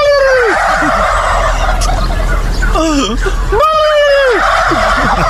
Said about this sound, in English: Because supposedly, if you make a turkey noise to a turkey, they'll make the noise right back to you. Of course they will. You know? It's not supposedly. It's for real.